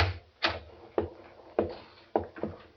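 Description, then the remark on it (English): A lodge door off a veranda being opened, heard as a short series of dull wooden clunks and knocks spaced about half a second apart, with no voices. “I got out of the car, walked to the veranda, and opened the door.”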